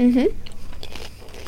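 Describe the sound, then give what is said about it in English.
Crisp crunching of someone biting and chewing a crunchy corn-based, cheeseburger-flavoured snack, a few irregular bursts following a short voiced hum at the start. “He's going for the crunch.”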